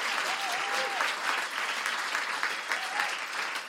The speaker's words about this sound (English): Can I have a huge, huge, huge round of applause for Ramita Naval?